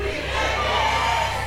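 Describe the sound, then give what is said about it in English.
An audience shouts together in answer to a speaker's call to shout louder, a loud, sustained roar of many overlapping voices, steady in volume for the whole moment with no single voice standing out. “Shout it louder.”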